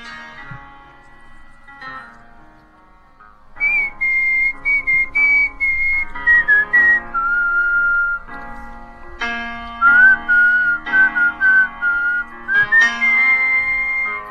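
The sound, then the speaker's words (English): A man whistles a melodic tune as a whistling competition entry, in clear, sliding pure tones with short phrases and brief pauses, moderately loud over soft background hum. “not only is he handy and does he make leaky watering systems, but he also whistles.”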